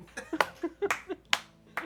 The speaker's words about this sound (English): The master claps again.